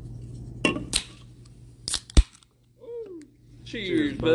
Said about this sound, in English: How about we start out by cracking this here caffeine open, because I am thirsty. You know what? That's a good damn idea.